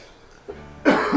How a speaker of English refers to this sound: And to me coughing nonstop.